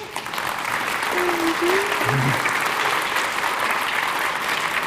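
An audience applauds a woman for her work, a dense, even wash of many hands clapping at constant loudness throughout, with a brief faint voice-like tone rising through it midway.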